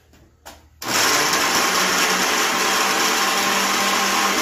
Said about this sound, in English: All right, so we got all that in there. Let's go ahead and hit our blenderino here.